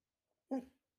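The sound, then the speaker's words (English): A border collie puppy named Oliver lets out one short, sharp bark on the command "speak", alone, with a brief tail of breathy sound before silence returns. “Yes, he's a cute border collie and just loves to chase his own shadows.”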